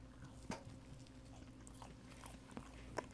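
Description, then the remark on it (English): Chewing of a soft, chewy sour watermelon candy with a marshmallow middle, with a few sharp bite clicks and wet mouth sounds spread irregularly over a quiet background hum. No talking. “Should I chew directly into the mic?”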